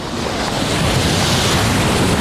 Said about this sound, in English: Well, these waves kind of suck.